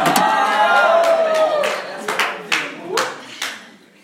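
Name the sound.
audience clapping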